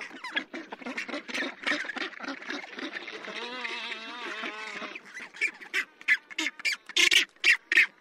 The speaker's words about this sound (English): It's the black-browed albatross that's laughing, and the high-pitched squawking comes from rockhopper penguins. Both of these species are awkward and ungainly on land, but masters of the wild waves that surround them.